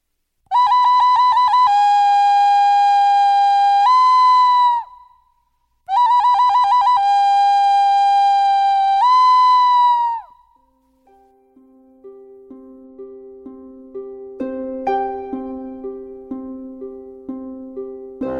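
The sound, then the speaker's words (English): A loud, high whistled bird call sounds twice, each phrase a quick run of repeated chirps that settles into a long held note and then drops. Softer, lower melodic notes follow. “But every once in a while, she'd hear the call of that bird.”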